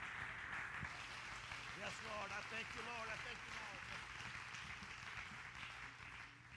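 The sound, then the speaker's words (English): A crowd gives a steady hand clap of praise, a dense wash of applause throughout, with voices calling out over it partway through before it eases slightly at the end. “Give them a hand clap of praise right now.”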